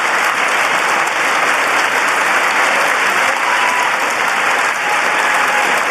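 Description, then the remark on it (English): Sustained applause from a large crowd at the US State of the Union address in Congress, a dense, steady wash of many hands clapping at once, loud and even throughout with no voices standing out. “She was really clapping hard.”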